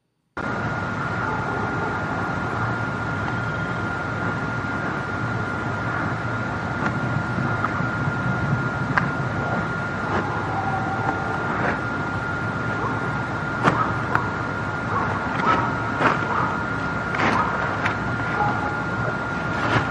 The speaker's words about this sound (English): And yes, they are definitely heavy, heavy footfalls. You know, in my own opinion, you know, I've heard plenty of deer in the forest and other stuff that's tromping around. This is a little bit different.